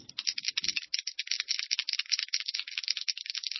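Dice rattle and clatter inside a box in a steady, rapid stream of bright clicks for several seconds, with a couple of dull knocks at the start and no voices.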